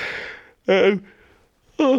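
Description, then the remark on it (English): A person yawns: a long breathy exhale, then two short voiced moans with a wavering pitch, separated by a quiet, airy pause. “A deeply unprofessional podcast yawn.”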